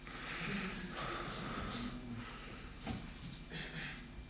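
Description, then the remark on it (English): A voice imitates deep, heavy mechanical breathing in the manner of Star Wars: slow, rasping inhales and exhales, about four in a steady rhythm, fairly loud with no words spoken. “Deep breathing.”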